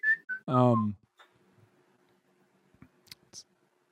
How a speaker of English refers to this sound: Also, just whistling really randomly. Funny. Yeah, just start whistling.